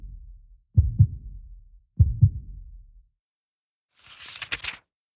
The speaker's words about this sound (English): Thinking about God, my heartbeat is quiet and peaceful again.